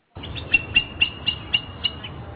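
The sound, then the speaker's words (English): Eagle parents crying out in a quick run of six high, thin, piercing calls, evenly spaced, over a low, steady rumble of outdoor background noise. “They're perhaps the nervous cries of parents whose chick is leaving the nest.”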